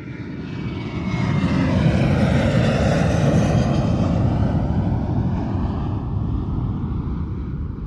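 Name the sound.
aeroplane flying overhead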